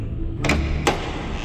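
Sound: door opening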